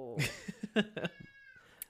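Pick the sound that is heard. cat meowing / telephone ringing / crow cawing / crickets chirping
cat meowing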